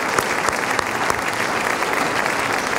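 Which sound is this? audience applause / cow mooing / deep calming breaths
audience applause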